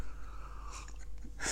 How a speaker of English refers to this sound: So I have a good slurp. I don't know why I took a cup of tea.